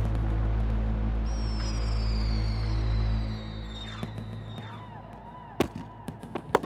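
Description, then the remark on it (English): Fireworks: a long descending whistle streaks across, followed by several sharp, scattered bangs and crackles, over a steady low rumble of outdoor ambience. “there's fireworks going off in the background.”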